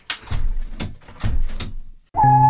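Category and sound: household object, window being closed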